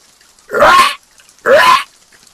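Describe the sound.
A voice imitates a woman's harsh, raspy call twice, somewhere between a crow's caw and a small dog's bark. Two loud bursts with a short pause between them, and no other talking.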